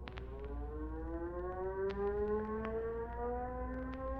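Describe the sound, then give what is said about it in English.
A loud airfield crash alarm siren at Rockford Tower, set off with the crash button, wails continuously, its steady tone slowly rising in pitch over a low rumbling background, with a few faint clicks scattered through it and no voices. “You better hit the crash button.”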